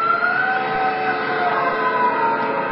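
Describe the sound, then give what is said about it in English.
A person's scream rises into a long, sustained wail with slightly wavering pitch, holding steady in loudness for a few seconds with no talking. “Did you hear that, Captain? Yes. Someone screamed.”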